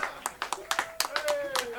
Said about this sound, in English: Finale applause time. Yes!